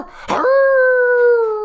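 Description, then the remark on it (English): A person imitates a dog's howl: a short breathy onset, then one steady, loud, drawn-out tone that sags slightly in pitch over about a second, with no talking. “Can you give me a little howl?”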